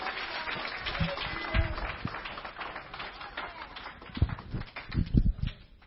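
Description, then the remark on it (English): A church audience clapping their hands unto the Lord, a dense, uneven patter of claps with a few louder sharp slaps near the end, and murmuring voices mixed in beneath. “Somebody clap your hand unto the Lord.”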